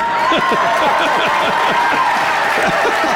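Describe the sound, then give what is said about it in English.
A crowd bursts into loud, sustained applause with scattered cheers and whoops at the call for Curtis Hill to run for governor, a dense steady clatter of clapping hands that holds at full volume for the whole stretch. “I can applaud that.”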